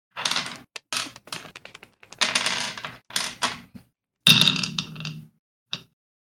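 household object, dice being rolled

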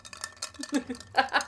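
household object, ice clinking

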